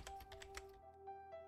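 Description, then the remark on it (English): Rapid keystrokes clatter on a computer keyboard at home, captured on a wiretap recording of a phone call, in a quick, uneven burst, then thin out to a few scattered taps over a steady low electronic hum. No one speaks. “As if this weren't enough, the wiretap record showed that Stacy Castor had been home that day, and on one of her calls as she spoke to a friend, the sound of Stacy Castor typing on the computer was clearly audible on the recording.”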